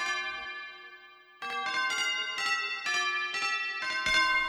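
Tubular bells, slightly out of tune, ring out a slow melody line: one long decaying tone, then a steady run of bright, resonant strikes about every half second, fairly loud with no voices.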